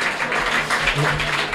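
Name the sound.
half-hearted audience clapping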